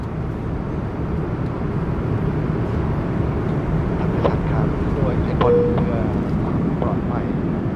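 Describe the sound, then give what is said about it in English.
A steady, low airplane cabin roar on a flight from Bangkok to Mumbai fills the whole recording, with a constant engine drone, a few brief clinks and tones near the middle, and faint indistinct voices in the background. “Well, I left Bangkok about an hour ago and I've just completed my airplane meal.”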